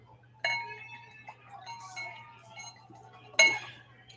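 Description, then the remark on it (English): Oakleaf Vineyards Shiraz wine, 12.5% alcohol by volume, bottled in Ripon, California, is poured into a glass: a sharp clink of bottle on glass, a soft ringing trickle, then another bright clink, over a steady low hum. “So I'm going to go ahead and pour this now.”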